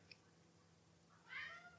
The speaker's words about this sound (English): Can you hear my cat?